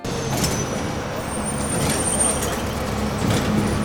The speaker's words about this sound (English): a steady stream of diesel buses pulled into NJ Transit's main depot in Camden.